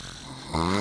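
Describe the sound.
A voice imitates a woman's snore: after a moment of hiss, a single loud, rough, nasal snort cuts in abruptly and holds to the end.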